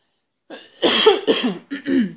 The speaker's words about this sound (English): I'm recovering from a cold, so excuse my coughing in between.